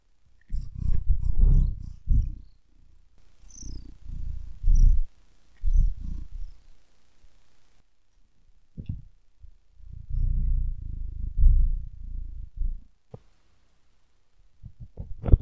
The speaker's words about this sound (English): Oh, cat. Let's see if I can get some cat noises.